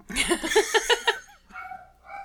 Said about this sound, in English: Shut up, dog. Oh wait, no, he's laughing at my joke.